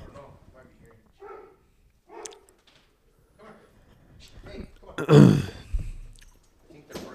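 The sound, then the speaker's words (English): A dog gives one loud bark partway through, set among stretches of people talking, with quieter vocal sounds before and after it. “He just wants to go outside to bark.”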